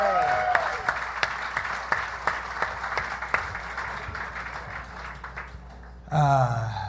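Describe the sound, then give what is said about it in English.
A comedy show audience claps and cheers steadily for several seconds as a comedian is introduced, a dense patter of hand claps with whoops mixed in, fading slightly before a man's voice begins speaking at the end. “Make some noise for …, ladies and gentlemen.”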